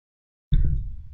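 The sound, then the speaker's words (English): After a moment of silence, a single sudden sneeze bursts out, loud and heavy, its low, breathy tail fading over the following half second. “Bless you. Thank you.”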